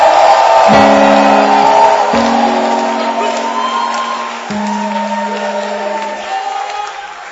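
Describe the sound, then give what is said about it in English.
An audience claps and shouts praise to Jesus together in a loud, continuous roar of voices and applause, with sustained low tones held underneath that fade slightly toward the end. “If you're happy about what I'm saying, I want you to clap your hands, lift up your voice, and give Jesus a shout.”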